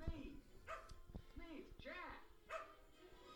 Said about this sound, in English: Yeah, that dog knows what's up.